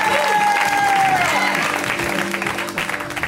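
A comedy show audience breaks into loud, sustained applause to welcome comedian Danielle Perez, a dense wash of clapping with some cheering and whistles mixed in, holding steady before starting to thin toward the end.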